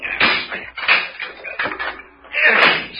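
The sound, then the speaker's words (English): A chair is smashed against a door lock again and again, about four loud wooden bangs at a steady pace, each followed by a brief rattling clatter; the leg breaks off the chair. “I'm putting the other furniture back so I can get a good swing. Now then, we'll see how strong that lock is.”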